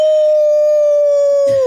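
A single long wolf howl, loud, holds one steady pitch for nearly two seconds before dipping slightly as it fades out; no one speaks.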